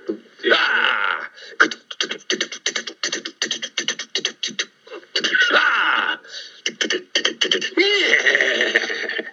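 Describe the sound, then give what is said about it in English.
A horse neighs loudly and up close, a long whinny made of rapid fluttering pulses that rise and fall in several bursts, ending in a drawn-out, breathy call. “Going out on my horse.”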